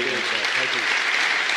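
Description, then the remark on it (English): A crowd claps steadily for Devin Toner in a dense, even wash of applause, with a few voices murmuring underneath near the start. “Round of applause for Devin Toner.”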